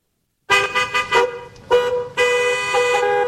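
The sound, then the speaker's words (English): Car horns honk loudly in road traffic on a stretch of road with gaping potholes, stagnant rainwater and mud from surrounding hills covering parts of it: a quick run of short toots, then longer sustained blasts overlapping one another, with no voices. “gaping potholes and stagnant rainwater, and mud from the surrounding hills have taken over portions of the road, forcing commuters to spend hours in traffic on that stretch.”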